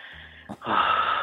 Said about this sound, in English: Just breathing heavily now?